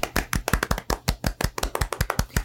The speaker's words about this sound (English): This is like, he is into dark humor, so can we just get a round of applause for him? You know, just...